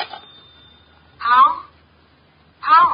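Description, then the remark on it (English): A telephone rings twice in short, loud bursts about a second and a half apart, with near-silence between them and no one talking. “Excuse me, the phone.”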